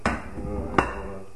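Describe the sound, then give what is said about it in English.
Potatoes with garlic being smashed in a pan, Jamie Oliver style: two heavy thumping impacts about three-quarters of a second apart, each a dull knock with a brief metallic ring from the pan. “So you're going to do a bit of a smashage?”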